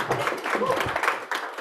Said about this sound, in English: So let's give him a little bit of credit for the Marines. Can we give them a small round of applause?